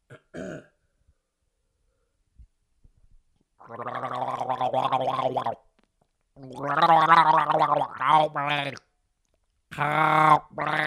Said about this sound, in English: your dentist asks you to gargle water, you just start yelling help me at the top of your lungs.